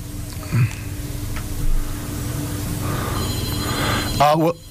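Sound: telephone ringing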